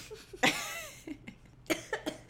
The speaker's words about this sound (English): Don't make me laugh. It makes me cough.